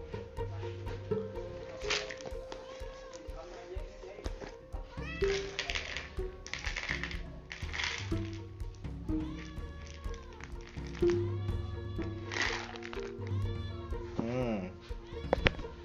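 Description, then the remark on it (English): A cat meows for food over and over as it is about to be fed in the morning, insistent rising and falling cries coming every second or two, with a person's voice occasionally talking and light tapping in the background. “And wait, let me feed the cat.”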